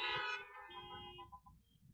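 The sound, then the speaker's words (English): Several car horns honk together in a loud, overlapping chorus of steady tones, beeped by a church audience in their cars at the preacher's call during a service, then trail off into a few short, fainter beeps as the sound fades out. “Come on, beep one more time if you love God.”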